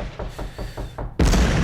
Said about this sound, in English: Oh, there's a knock on the door.